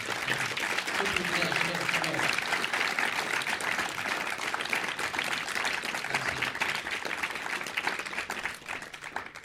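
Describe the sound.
An audience applauds steadily for about ten seconds, a dense, even roar of many hands clapping, with a few voices faintly audible in the first couple of seconds.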